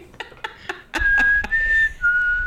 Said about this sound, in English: A lot of whistling that kind of creeps you out a little.